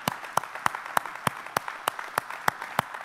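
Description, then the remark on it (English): An audience claps together as part of worship in a steady, even rhythm, about three sharp claps per second, with a soft crowd wash filling the gaps between beats and no voices. “It's something we're doing in our worship. Something we're doing in our applause.”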